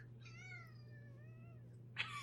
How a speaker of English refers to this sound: I'm playing Cambria meowing. Like a bagpipe. You squeeze her belly a little bit and she talks.